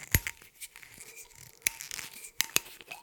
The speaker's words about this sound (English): So, took that off. Let's crack the plastic screw cap.